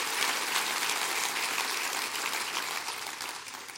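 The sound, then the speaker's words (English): An audience clapping their hands, a dense, steady wash of many overlapping claps at even loudness that eases off slightly toward the end. No voices stand out. “Come on, clap your hands.”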